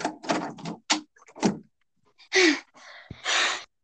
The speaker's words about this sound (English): They run into Abigail's house and lock the door with a triple bolt